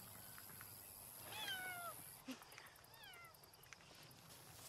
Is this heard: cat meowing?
yes